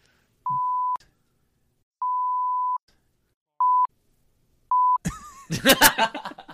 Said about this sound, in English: Well, that was a funny one, but guess what that's going to translate as? Four big, long beeps in a row. So, no one's going to know.